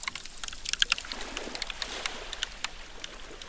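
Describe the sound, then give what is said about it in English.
Glacier meltwater running into a fjord in Svalbard in summer trickles and splashes steadily while sharp, irregular cracks and pops of glacier ice crackle over it, some brighter snaps standing out against a soft, continuous watery hiss. No one speaks. “You can hear the water running into the fjord, but also the cracking of the glacier ice.”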